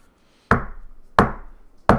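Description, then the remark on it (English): A secret knock: three sharp, heavy knocks on a door, evenly spaced about two-thirds of a second apart, each with a short resonant ring. No one speaks. “That's the secret knock.”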